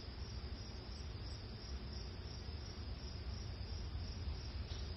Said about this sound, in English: We had a thunderstorm just kind of skirted us, so we hear the rumbling in the distance now, and we hear the singing of the crickets.